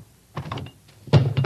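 A hammer drops and lands on a foot: a dull, heavy thunk with a short rattling tail, then a second, louder thud a moment later. No voices.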